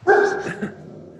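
A single loud bark from a pet dog named Nipsey, with a harmonic, slightly whiny tone, trailing off into a brief softer yelp within about a second.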